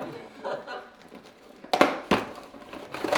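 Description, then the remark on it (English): Paper crinkles and rustles in a few sharp bursts as a Christmas Day present is unwrapped, with quieter handling noise between them and faint voices in the background. “Oh, yeah, sorry, you've got to crack that open.”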